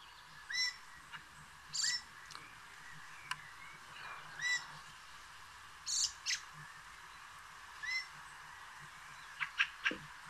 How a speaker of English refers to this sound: I feel wrong, but... I think Fieldfare is the bird. All right. And the bird is... Fieldfare.